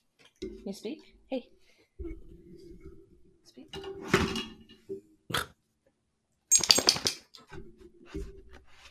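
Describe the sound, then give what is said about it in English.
A dog named Cooper breathes and snuffles right up against the microphone in a few loud, breathy bursts, with soft, low human vocal sounds murmuring in between. “Yes, he was breathing into the microphone.”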